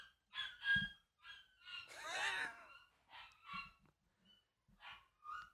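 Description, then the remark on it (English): A puppy yaps and barks in a quick series of high, squeaky bursts, one longer whiny cry in the middle, moderately loud, with no one talking. “Well, there goes my baby. It's just a puppy.”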